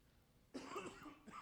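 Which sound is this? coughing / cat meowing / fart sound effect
coughing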